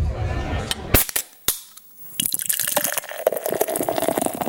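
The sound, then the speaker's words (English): A few sharp clicks and cracks, then beer pours into a glass in a steady, fizzing splash that keeps going for a couple of seconds. “Come and drink a beer with me here.”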